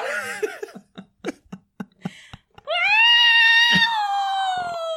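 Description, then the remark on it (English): A person yowls in a loud, drawn-out, wavering wail mimicking a caterwauling cat, sustained for about two seconds after a run of short clicks and brief vocal bursts. “Like, I want to pass off my cat duty. Caterwauling.”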